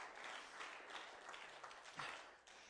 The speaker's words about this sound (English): If you believe that, give Him a hand clap of praise. Glory to God.